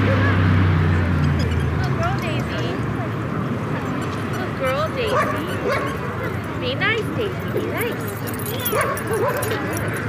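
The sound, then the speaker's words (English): Several dogs bark, yip and whimper at varying distances at a suburban dog park beside a busy expressway, over a constant roar of expressway traffic, with faint chatter from people in the background. “This dog park is adjacent to a rather busy expressway.”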